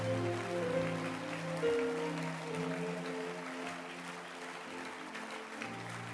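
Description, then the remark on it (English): An audience at a Sunday morning church service claps loudly and steadily for the Lord, a dense wash of many hands applauding together, with sustained tones from an organ or keyboard ringing underneath throughout. “Give the Lord your final and a loud hand clap.”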